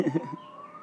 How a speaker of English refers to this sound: I guess the ambulance sound is right for that because it's critical out here right now, man. Prayers be to whoever they're trying to go safe to.